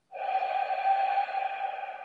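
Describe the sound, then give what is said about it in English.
A long, steady exhale of breath, breathing out all the air at the start of a box-breathing exercise, airy and sustained for about two seconds, heard alone at a soft, even level without any talking. “So begin by breathing out all your air.”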